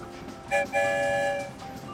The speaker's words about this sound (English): One whistle for yes, two whistles for no. Let's ask the story train a question. Are we going to a forest today? One whistle means yes.